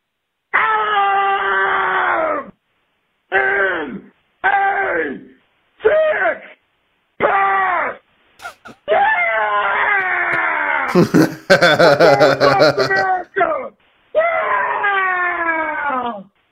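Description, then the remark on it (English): A man screams and wails in long, strained bursts separated by short gaps in a recorded voicemail, loud with a distorted, phone-like quality, ending in a few harsh crackling peaks. “We do have a tight club with some scream mails. Ooh, well, hit me with a scream mail, my man.”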